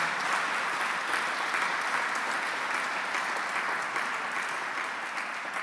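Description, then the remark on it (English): A crowd at an evening event applauds honorees recognized for their work on sarcoidosis, a dense wash of clapping that holds at an even, fairly loud level throughout before easing slightly at the very end. “And so how about a round of applause for all of these honorees here tonight?”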